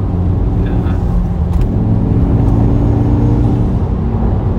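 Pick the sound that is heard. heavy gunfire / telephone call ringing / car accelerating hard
car accelerating hard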